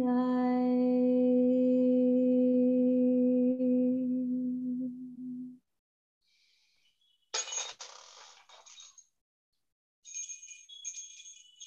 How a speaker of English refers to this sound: There's my little bell again, just calling us back. And notice how the sound continues even after our ears have captured the melody. The sound will continue to enter in and go in and out of our awareness and continue to do its magic.